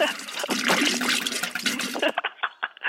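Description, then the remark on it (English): A toilet next door flushes with a loud, rushing surge of water for about two seconds, then settles into a quieter, gurgling refill that trickles on to the end. “Was that the toilet flushing?”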